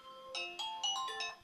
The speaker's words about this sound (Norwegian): Oi, her ringer det. Jeg sa det kom til å ringe.